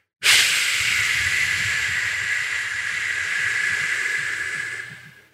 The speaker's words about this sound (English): I want you to open your mouth and with control, exhaust all the air from inside of you out.